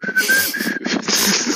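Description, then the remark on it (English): Someone whistles a brief, jaunty tune, a few bright notes with short gaps, turning breathy and airy toward the end. No one speaks. “Maybe you could whistle a jaunty tune.”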